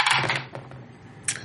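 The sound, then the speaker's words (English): Several Fate dice are rolled, clattering and tumbling across a hard surface in a quick rattling burst, followed by a few scattered ticks and one last sharp clack, with no talking. “That is a zero. I roll like shit all night. Plus four. Fate dice hate me.”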